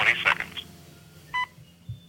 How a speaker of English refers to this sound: U.S. Naval Observatory Master Clock at the tone Eastern Daylight Time, 11 hours, 5 minutes, 30 seconds. Nice. Yeah, that's how it used to be.